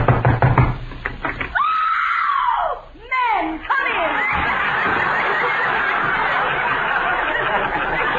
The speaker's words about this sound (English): Well, here's Tessie Tinfoil's house. I hope she's home. Go ahead and knock.